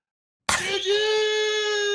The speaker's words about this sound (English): GG! It's my GG button. That time it picked up, it sounded like like a collapse.